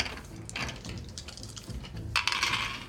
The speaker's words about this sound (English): Everyone make a roll against your soul score, please. Use 2 8-sided dice.